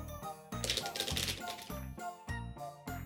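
A quick burst of clattery shuffling, like cards or tiles being mixed, rattles for about a second over a steady, tonal background, with a few sharp clicks around it.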